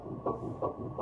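A fetal heartbeat on an ultrasound monitor: rapid, muffled whooshing pulses repeating about three times a second over a steady low hiss, with no voices.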